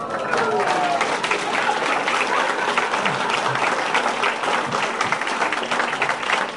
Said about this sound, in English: could we all, just for a second, take a moment to think about and then to have another round of applause for Michael and Claire Morpurgo, who have just celebrated 60 years of being married.